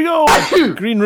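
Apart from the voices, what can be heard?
sneeze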